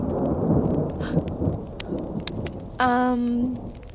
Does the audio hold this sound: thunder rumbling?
yes